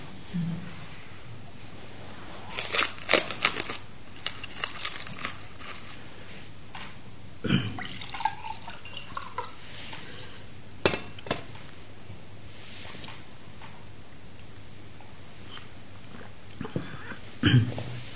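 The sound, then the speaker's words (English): Someone drinks from a glass of water during a talk, with a light glass clink, a few soft gulps and swallows, and quiet pauses between sips. “And just like to speak briefly about another support, and that, excuse me, another support is a glass of water.”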